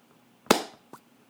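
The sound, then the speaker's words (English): Two slow, sharp hand claps imitating the rhythmic clapping of Chad Michael Murray's character, who stands up in the audience all in white: the first loud with a brief ringing tail, the second softer about half a second later. No one speaks. “Starts rhythmically clapping, just going.”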